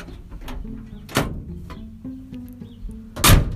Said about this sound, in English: I'm just sitting in my brother's truck. The reason why I slammed my door is because you have to do that for it to shut completely. It's a Dodge truck.